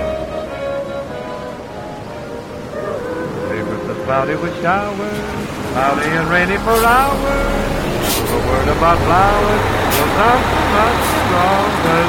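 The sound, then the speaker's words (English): A bus bound for Philadelphia drones with steady road rumble underneath, loud and continuous throughout, while several people talk over the noise. “The bus to Philadelphia resumes services in 15 minutes.”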